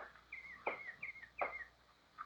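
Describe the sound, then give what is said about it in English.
Birds chirp softly in a quick series of short, bright tweets, four or five calls close together with brief pauses, fairly faint against a quiet background with no talking. “Father, birds, look.”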